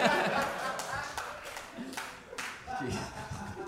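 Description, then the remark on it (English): An audience claps in a scattered, uneven patter for a few seconds, with some chuckling and murmuring voices mixed in toward the end. “That was a generous clap.”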